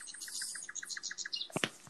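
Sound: birds chirping sound effect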